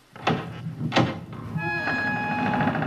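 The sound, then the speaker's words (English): Two heavy knocks on wood ring out, then a storage hut door creaks slowly open with a long, drawn-out groaning squeal that holds steady until the end. “With a haunted house creak, the storage hut door slowly opens.”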